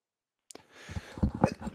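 A sudden, sharp sneeze bursts out after a moment of silence, fairly loud, followed by a brief rough, breathy trailing sound.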